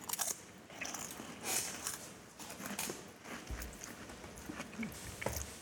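Crisp crunching and biting of crackers as people chew, with repeated irregular chews and small crackles over a few seconds, fairly quiet with no talking.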